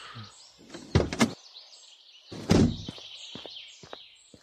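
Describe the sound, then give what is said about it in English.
A car door unlatches with a couple of sharp clunks, then swings shut with a heavy thud, followed by a few faint clicks and rattles as things settle. No one speaks. “Don't worry, I'll get your door.”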